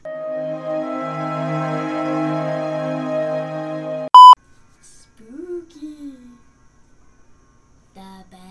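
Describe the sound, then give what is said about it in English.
Church bells at a nearby church ring loudly and steadily for about four seconds, their overlapping tones blending into a sustained wash. Then a short electronic beep cuts in, followed by faint, quiet speech. “We're just gonna wait for the church bells to stop.”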